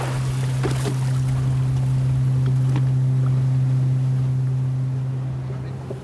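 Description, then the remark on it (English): A boat engine drones steadily and loudly throughout as the boat heads through rough, worsening seas toward Loreto Harbour, with rushing water and wind noise plus occasional thumps of hull slapping against waves. No one speaks. “It was actually becoming dangerous to be out at sea, and we needed to quickly head for the safety of Loreto Harbour.”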